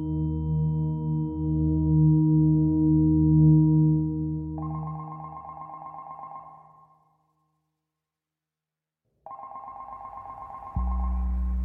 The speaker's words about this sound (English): Back in D.C., a phone rang at the embassy.